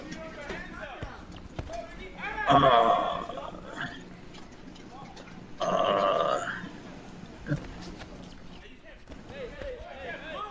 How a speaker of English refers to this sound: Look at the horse!